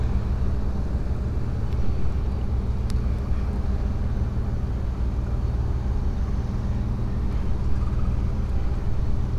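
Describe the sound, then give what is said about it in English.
Outdoor ambience beside the harbour in Pasto at the start of a walk: a steady, continuous low rumble like idling boat or vehicle engines, with a few faint clicks and no voices, holding an even loudness throughout. “I'm in Pasto, next to the harbour, at the start of today's walk.”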